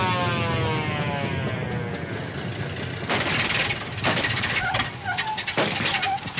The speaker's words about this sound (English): Uh-oh. What's the matter? A motorcycle cop is waving us over.